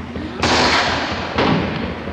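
gunshots

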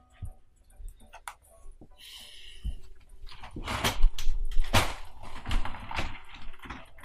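door being shut

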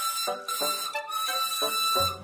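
steam engine whistle

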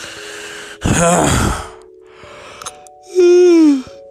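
big yawn

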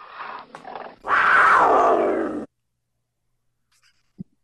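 lion roar

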